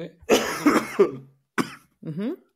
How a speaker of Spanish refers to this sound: Puta tos de mierda. Puta tos de mierda.